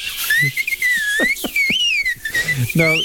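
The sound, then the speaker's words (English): A person mimics the thin, wavering whistle of wind over a car roof rack while driving along, a steady high-pitched tone that bends up and down for a few seconds, fairly loud. “The roof rack? Yeah. Because it whistles.”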